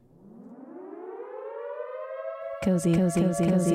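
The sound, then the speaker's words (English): A siren alarm sound effect winds up steadily from a low growl to a loud, rising wail, then a voice cuts in over the still-sounding siren for the final second. “I am actually duty-bound to now play the cozy alarm for you. So here's the cozy alarm, you got to sound it.”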